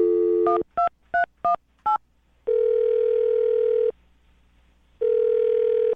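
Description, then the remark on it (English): A steady dial tone cuts off into five quick, evenly spaced touch-tone beeps as a woman's phone number is keyed in on a telephone. Two long, loud ringback tones follow, with a pause between them. “All right, well, I'm going to dial her phone number and let you make your phone call.”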